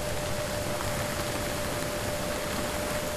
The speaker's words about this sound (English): Also recorded a lot of ship noise,